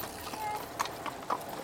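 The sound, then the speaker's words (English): Horse hooves clip-clop on a hard road, a few sharp, evenly spaced knocks over a steady outdoor hum. “You notice the way people on horses always say hello to cyclists?”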